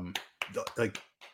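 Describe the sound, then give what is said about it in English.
A few quick, light hand claps, a small clap for a home run by Braves player Hunter Renfro, soft and sharp, landing in an uneven little burst while a man's voice murmurs underneath. “Sorry, gotta give my boy Hunter Renfro a little small clap there.”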